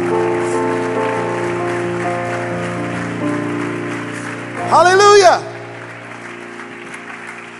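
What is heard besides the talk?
audience clapping hands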